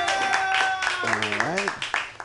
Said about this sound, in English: Thank you. A round of applause.